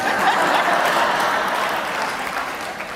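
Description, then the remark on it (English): Audience applause fills the whole stretch, a steady wash of many hands clapping at a fairly even loudness, with no one speaking over it. “Not as many claps.”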